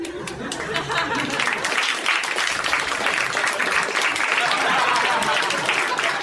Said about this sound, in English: He applauded himself.